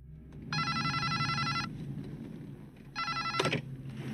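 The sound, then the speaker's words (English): An old Gordon Gekko-style brick cell phone rings with a bright, warbling electronic trill in two bursts, one long and one shorter, loud over a low background hum with no talking. “Well, ultimately, it could mean they go the way of the Gordon Gekko brick phones.”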